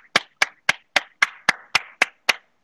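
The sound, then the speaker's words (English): Nine sharp hand claps in a steady, fairly quick rhythm, each a crisp bright smack with a short tail, on their own with no talking. “don't clap.”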